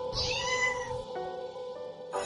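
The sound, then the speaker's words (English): A cat lets out a long, drawn-out meow, loud and tonal, holding for about two seconds before ending abruptly, with no talking. “Kitty!”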